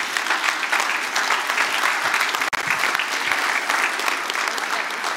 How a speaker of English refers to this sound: Yes, let's applaud these people.